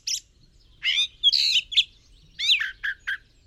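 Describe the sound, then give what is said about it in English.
A jay calls in two short bursts of harsh, raspy squawks and chirps, clear, with brief pauses between them and no voices. “For a jay that lives in the forest is its habitat, where it finds food, water, shelter, and the company of other jays.”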